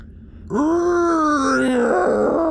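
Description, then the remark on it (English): A person vocally imitates the deep creak of a metal bridge settling as things begin to shift: one sustained, low groaning moan with a strained, slightly rising then sagging pitch, loud and steady for about two seconds, no other talk. “Saul doubles his jump, does a long jump, gets about halfway across the bridge, lands nimbly on top of one of the huge rocks, and you hear a deep creak, like a moan from the metal, as things begin to shift.”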